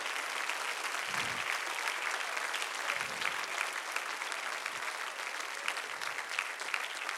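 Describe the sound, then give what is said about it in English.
A large audience stands and applauds baptism candidates, a dense, steady wash of clapping from many hands that carries on without pause for several seconds, with no speech over it. “Would you stand and applaud those candidates?”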